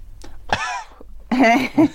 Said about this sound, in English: I love that's all I have to do to get any kind of reaction, whether it's fear or humour. People react when you cough at the moment.